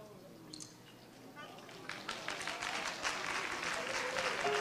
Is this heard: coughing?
no